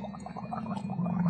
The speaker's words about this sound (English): Oh, I'm gargling honey water. Gotta keep that throat nice and relaxed.